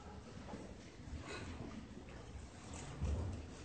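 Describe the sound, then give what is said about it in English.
Many Bible pages turning at once as listeners open their Bibles to page 1, a soft, continuous papery rustle with occasional brief crinkles rising above it and a low rumble underneath; no one speaks. “I hear pages turning, so I'll wait a second.”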